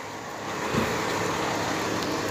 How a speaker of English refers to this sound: There's a big truck.